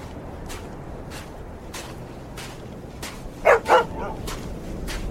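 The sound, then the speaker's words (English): A dog gives two quick, sharp barks, standing out clearly over a steady background hiss. No one speaks. “What you found, dog?”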